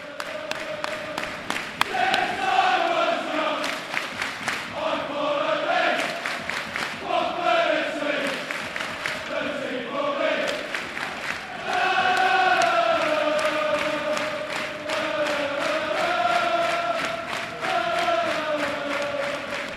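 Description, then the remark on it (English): A large football crowd chants in unison, voices rising and falling in a sustained sung line, with loud rhythmic clapping punctuating the chant throughout. “Let's not give Watford the opportunity to reach for that canned crowd noise ever again.”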